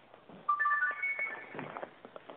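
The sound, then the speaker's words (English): A mobile phone ringtone chimes in a short run of clear electronic tones, rising then holding, during a live radio broadcast, against faint background noise for about a second. “That's your phone.”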